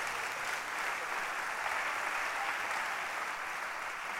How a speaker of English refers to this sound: The next, you can clap if you want to clap. I mean, you are in church.